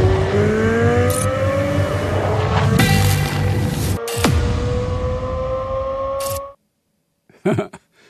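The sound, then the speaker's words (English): A car engine revs loudly and continuously in a commercial, its pitch climbing in rising harmonic sweeps with sharp bursts, then cuts off abruptly into silence followed by a couple of brief clicks. “The Anchor Baby put that little portion in there like it was a car sale. It's a placement commercial.”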